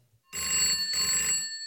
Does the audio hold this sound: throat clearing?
no